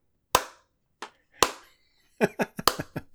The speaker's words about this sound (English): The slow clap.